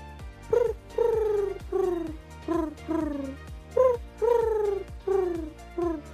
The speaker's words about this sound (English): Oh, that's lovely. That's someone's phone going, is it? No, it's pigeon. Oh, pigeon! They have their own little ringtone, though.